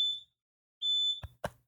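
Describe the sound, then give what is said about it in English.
A fire alarm sounds two shrill, high-pitched, loud beeps, followed by a few dull thuds or knocks. No one speaks. “I think like there's a fire in the building. My alarm.”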